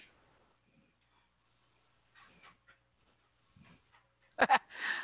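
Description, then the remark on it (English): Dogs playing tug-of-war over a blanket: quiet scattered rustling and faint growly noises, then a sudden loud snarling burst near the end. No one talks. “My dogs are playing tug-of-war over the blanket.”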